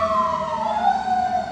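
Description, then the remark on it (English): A fire truck siren wails steadily and loudly in La Mesa, its pitch sliding slowly downward as the vehicle passes, with a low engine rumble underneath and no voices. “And I think it's sirens in the background.”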